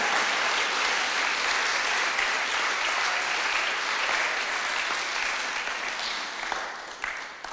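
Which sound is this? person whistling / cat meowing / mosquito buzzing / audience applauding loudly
audience applauding loudly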